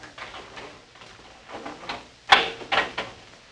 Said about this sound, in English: Come on. Let's have a look. All right. I'll get the door.